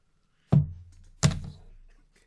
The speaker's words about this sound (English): Pen drop.